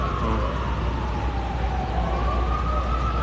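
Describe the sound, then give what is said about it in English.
A police siren wails in a park in New York surrounded by skyscrapers, its pitch sliding slowly down and then back up, over a constant low rumble of city traffic. No one speaks. “You know, with skyscrapers in the background and police sirens in the foreground and surrounded by skyscrapers.”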